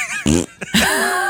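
A loud fart sound effect: a short buzzy blast, a brief sputter, then a longer squeaky, wavering toot trailing off, with no one talking.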